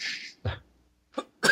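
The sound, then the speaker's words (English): A breathy intake followed by three harsh coughs at uneven intervals, the last one the loudest. Nobody speaks. “Sorry for the cough.”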